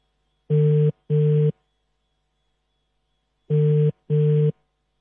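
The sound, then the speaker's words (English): A phone ringing tone on an outgoing call, heard as two double-ring bursts: two short buzzy rings, a long pause, then two more. It is steady and clear, with no voices. The call is placed to a woman on her birthday. “Let's see if she will pick up her phone.”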